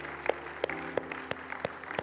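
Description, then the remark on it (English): An audience claps in a steady, unified rhythm, giving the Lord a hand clap for those giving their lives to Jesus, with sharp beats about three per second over a continuous wash of scattered applause. No one speaks. “Would you give the Lord a hand clap with those who are giving life to Jesus today?”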